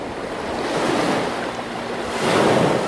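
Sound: ocean waves and surf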